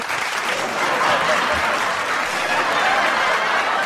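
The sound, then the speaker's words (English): A crowd cheering sound effect: a crowd cheers and applauds steadily for about four seconds, a dense, loud wash of clapping and shouting that stays even throughout with no pauses. “Crowd's happy about it. Loves it.”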